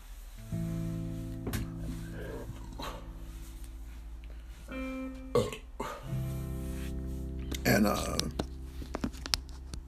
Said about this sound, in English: And yeah, I just burped. I'm gassy.